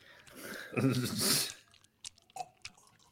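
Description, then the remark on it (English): Wet, slurpy chewing of a juicy peach right up against the microphone: a loud squelching burst, then several sharp, sticky mouth smacks and clicks trailing off. “Stop chewing on the mic.”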